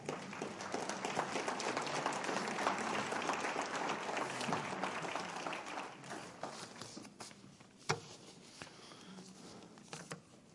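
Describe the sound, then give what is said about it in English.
An audience applauds during a sermon to affirm the Bible and the Word: a dense, loud wash of many hands clapping that gradually thins and fades, leaving a few scattered claps and a sharp isolated clap near the end. “Why are we clapping?”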